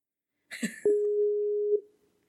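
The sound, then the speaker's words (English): A short burst of handling clicks, then a single steady electronic ringing tone of an outgoing call placed from a computer hums for about a second before cutting off, clear with no talking. “No, it's ringing. That's a good sign.”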